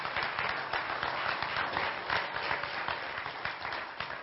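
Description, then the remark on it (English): A crowd applauds steadily to celebrate a graduate who finished a master's in pastoral ministry, many hands clapping in a dense, even patter that holds at a constant loudness with no voices over it. “Yeah, you can clap.”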